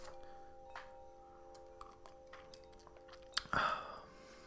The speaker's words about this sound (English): sip of my tea quickly.